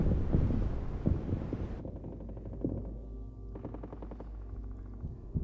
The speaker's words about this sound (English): You still hear the explosions in the distance.